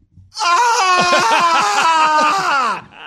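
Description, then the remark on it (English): A person lets out a loud, drawn-out mock scream of shock lasting a couple of seconds, strained, with a wavering, quivering pitch before cutting off abruptly. “Like screaming.”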